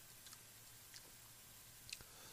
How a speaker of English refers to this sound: He's still chewing.